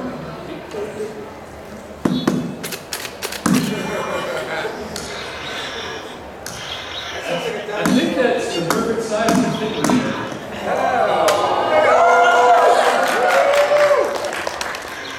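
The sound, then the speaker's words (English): A Slap Chop being plunged onto food, giving sharp, irregular clacking chops spaced a second or so apart, with lively voices and background chatter running underneath and growing louder toward the end. “Let's chop!”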